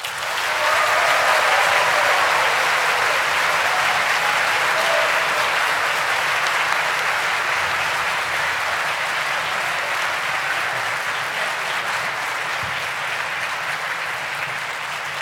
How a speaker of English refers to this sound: please show your hearty applause and your hearty enthusiasm by clapping your hands and stomping your feet. All right, on to the voting. If you would like to vote for the affirmative team representing Nebraska, please have your applause now.